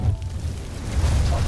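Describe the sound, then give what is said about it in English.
A deep, rumbling boom rolls through the whole moment, heavy and low like a loud explosion, swelling slightly toward the end with no clear sharp crack, as a glass vessel holding an elixir bursts and a ray of fire shoots up from it. “A loud explosion startled me.”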